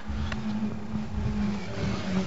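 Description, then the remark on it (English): A steady, droning roar of racing car engines, including a Capri, a Mini and an Escort, circling a track in an endurance race with 20 minutes to go and 14 cars still running, a constant mechanical hum with no distinct single pass-by, and no voices. “wait for the Capri to come back around and the Mini to come back around, but that is the battle at the moment for fifth and sixth place, as a 218 follows a 219 from the Euphoria Escort.”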